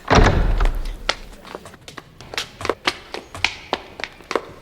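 A door swings open with a low thud and rumble, then a quick, steady run of sharp footsteps or taps follows, with no one speaking.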